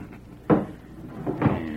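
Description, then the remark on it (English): Two heavy wooden thuds, a sharp clunk followed a second later by a lighter knock and another solid bump, as a bar is dropped into place across a wooden door to bar it shut. “Better make sure the door's barred tight.”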